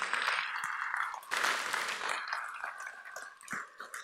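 An audience bursts into a round of applause, a dense, steady wash of many hands clapping that holds for several seconds and thins slightly near the end, with no voices over it.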